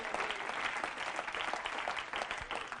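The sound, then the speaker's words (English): A church audience claps to the Lord steadily and densely, many hands overlapping into a continuous, bright patter of applause that holds an even loudness throughout without any voices standing out. “Clap your hand to the Lord of glory in Jesus' name.”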